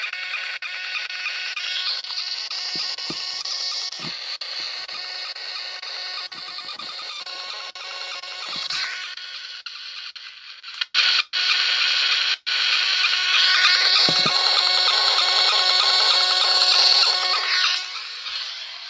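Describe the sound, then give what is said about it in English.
Harsh, buzzing radio static from a spirit box switched from FM to AM fills the whole stretch, with warbling tones and chopped bursts as the receiver sweeps rapidly through stations, broken by a few abrupt dropouts near the middle. “Okay, clearly I'm gonna get some sort of other interference going.”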